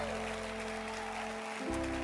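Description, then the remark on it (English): A standing audience claps continuously to welcome a bishop, a dense, steady wash of applause, with sustained low musical tones humming underneath that shift pitch near the end. “And I am very happy with the way you are clapping.”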